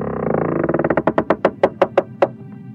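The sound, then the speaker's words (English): A door creaks open: a rapid, grinding ratchet of creaks that gradually slows into a few separate, sharp clicks before stopping. No voices. “And here I am again, opening yet another door.”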